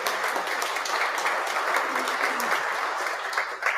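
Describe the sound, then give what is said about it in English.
Sustained applause from a large group in a church, celebrating money raised for missions, a dense, steady wash of clapping hands that holds at an even loudness throughout without any voices standing out. “Let's give that a round of applause.”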